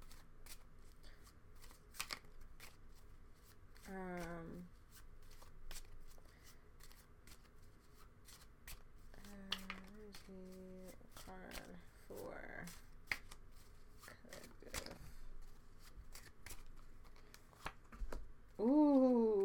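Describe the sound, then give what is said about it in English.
A deck of cards being shuffled as a card is pulled for the collective, with rapid papery riffling clicks and flicks running throughout, interrupted by a few short bursts of a voice speaking or humming. “I just pulled a card for the collective.”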